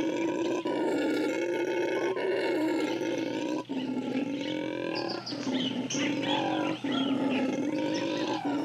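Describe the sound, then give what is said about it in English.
A female monkey clinging to a bare branch in a flooded jungle in Surinam, 1964, howls a long, loud call to her troop, a continuous throaty roar with rising and falling pitch and brief breaks, lasting several seconds with no voices. “She howls a call to them.”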